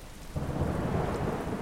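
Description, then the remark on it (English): A heavy tropical rain squall pours down at sea in a dense, steady roar with a low rumbling undertone, swelling suddenly after a brief quieter start and staying loud throughout. “Tropical rain squalls, thick, opaque curtains of water, had been scattered all around Sammy B all morning”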